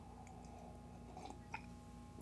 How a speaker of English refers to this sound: Good to be back. I'm gonna sip this coffee real quick.